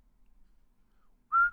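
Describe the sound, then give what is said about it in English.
After a stretch of near silence, someone whistles a single short, clear, steady note, loud and sudden, cutting off just as it ends. “Oh, whistle.”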